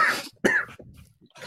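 Someone coughs up close in a quick series of harsh, raspy bursts, the second hacking cough loudest, with a rougher throaty cough starting at the end; no one speaks.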